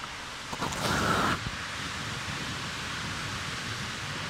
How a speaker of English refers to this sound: There's another one you can hear flowing under a street out in West Baltimore.